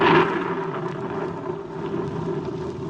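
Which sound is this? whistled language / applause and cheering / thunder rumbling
thunder rumbling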